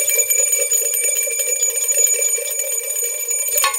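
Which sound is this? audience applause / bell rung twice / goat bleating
bell rung twice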